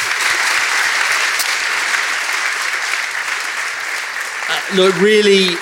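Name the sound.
audience applause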